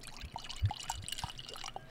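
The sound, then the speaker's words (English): Wine trickles gently into a glass, a soft pour with small gurgles and bright splashes over about two seconds, with no voices. “That was a gentle pour.”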